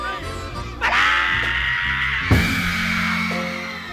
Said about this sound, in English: What's the magic of that scream?